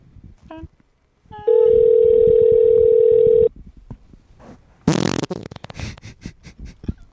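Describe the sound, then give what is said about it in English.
A phone line as a call is placed to a McDonald's in Fayetteville: a brief beep, then a steady, loud ringing tone holding for about two seconds, followed by a burst of rustling noise and faint background voices. “I'm calling McDonald's in Fayetteville.”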